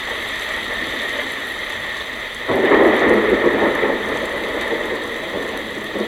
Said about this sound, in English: sounds so much like rain, doesn't it? Oh, listen to that.